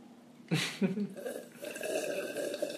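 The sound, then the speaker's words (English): A loud, wet slurp of someone sipping tea, starting abruptly with a couple of quick gulping bursts, then a drawn-out throaty, gurgly tail. No one speaks. “that was me sipping some tea”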